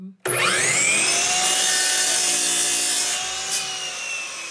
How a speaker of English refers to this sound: Puckett lowers the handle on a chop saw to trim a piece of wood